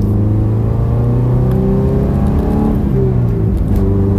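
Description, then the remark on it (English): A Subaru station wagon's engine revs loud, its droning pitch climbing and dropping as the driver shifts through the gears of its 5-speed manual gearbox, with no talking. “I love my car the way it sounds. It's that manly thing going between gears.”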